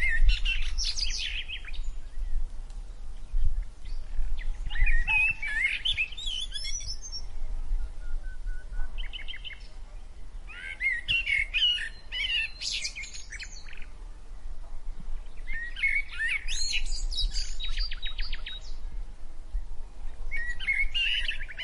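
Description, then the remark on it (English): Birds chirp and tweet melodiously in repeated bright bursts in a forest on a sunny morning, over a steady low outdoor rumble, calls coming every few seconds, with no voices present. “The birds chirped melodiously as they walked, talking about all the fun they were going to have.”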